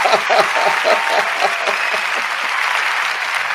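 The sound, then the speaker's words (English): A burst of canned applause from a soundboard plays steadily, dense clapping from a large crowd with a bright, hissy texture, loud, running the whole length without talk. “Nice thunderous applause.”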